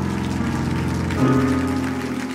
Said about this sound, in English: Take 15 seconds. Clap your hands.